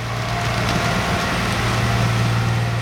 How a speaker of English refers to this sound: Behind where he's standing, a massive truck overflowing with exposed tree roots and mounds of earth rolls past, clearing the tracks after a recent landslide.